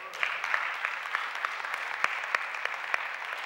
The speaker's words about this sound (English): Let's give God a hand clap of praise for that.